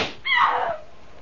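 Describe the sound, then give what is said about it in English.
A single sharp gunshot cracks out, then its bright, ringing tail fades over about half a second. No voices are heard. “Guns ain't no good.”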